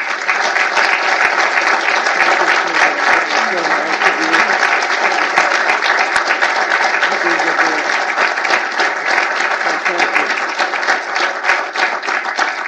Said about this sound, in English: Well, thank you all for that nice round of applause. I've been in places where it was otherwise.